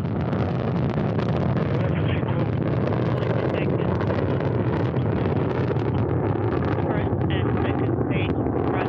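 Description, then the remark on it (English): A Soyuz rocket's engines roar steadily during launch from Baikonur, Kazakhstan, on a clear day, carrying a crew to the International Space Station with about 930,000 pounds of thrust from four strap-on engines; a dense, unbroken rumble with a hissing, crackling edge that stays loud and constant without pause. “That Soyuz delivering about 930,000 pounds of thrust from those four strap-on engines in the core.”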